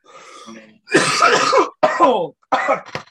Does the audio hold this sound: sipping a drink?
no